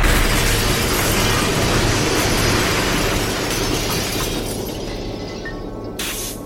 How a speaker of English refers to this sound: He drove it right through the gate and security shed, plowed it across the driveway, the lawn, and then crashed it right into the house.